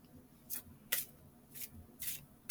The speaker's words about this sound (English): We're still shuffling.